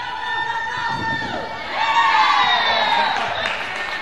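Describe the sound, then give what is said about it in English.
At a dog agility competition, a crowd including people from McCann Dogs cheers and shouts loudly and continuously for the runners to go faster, voices overlapping in excited whoops that swell louder about halfway through and stay high to the end. “leading the way, screaming at the top of her lungs for us all to run faster for this.”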